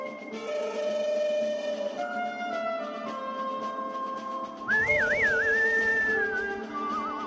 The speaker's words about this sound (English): Oh, that is some haunting whistling right there. The old Clint Eastwood westerns, spaghetti westerns.